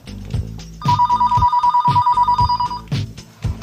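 A landline telephone rings with one rapid, trilling burst lasting about two seconds, loud, while a steady low thumping beat continues underneath.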